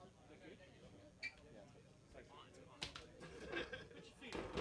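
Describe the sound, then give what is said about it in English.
Construction banging: several sharp, irregular knocks and thuds, fairly quiet, scattered over a few seconds with a low rumble and muffled voices underneath. “Oh, it's a heavy chair. We got some construction going on.”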